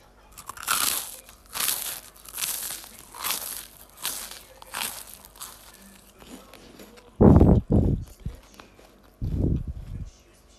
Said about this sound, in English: right now, we are chewing a very crunchy crinkle toast.